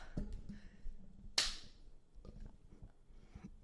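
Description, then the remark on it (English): A single sharp hand clap, done only once, rings out crisp and quickly fading over a faint low background rumble. “We already clapped.”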